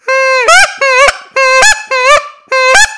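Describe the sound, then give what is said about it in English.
Five loud, nasal goose-call honks blown in a steady rhythm, each a sustained reedy tone that breaks sharply upward into a higher crack at the end, with short silent gaps between them. “Yeah, see, I'm trying to blow it like I blow the molt gear. I can't get that honk out there, so.”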